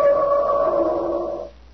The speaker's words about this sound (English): the instrument sounds exactly like an elephant trumpeting. Of course.